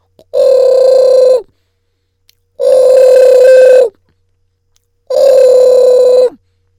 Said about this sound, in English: Boy. My phone is ringing. Oh, dear me. Oh, my. Oh, let me go get the phone.